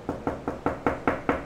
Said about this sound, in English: Their room is across the hall from you, so you can go straight to their door and knock.